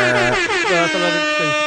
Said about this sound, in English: Going to throw some air horns in there.